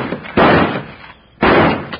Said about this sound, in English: Then I can shoot this lock off. Stand back, will you, honey?